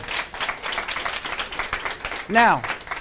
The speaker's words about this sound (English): Wow. Give a round of applause on that.